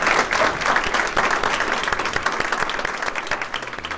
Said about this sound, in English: All right, and if you would all give our panelists a round of applause. So thank you.